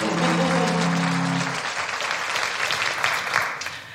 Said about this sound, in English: A round of applause for all of them, folks.